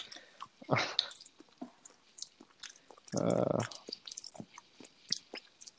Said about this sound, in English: Are you chewing your pills? No, I'm not. Why would I chew my pill? I don't know. It sounds like you're chewing pills. All I hear is... Yeah, I am chewing my pills, actually.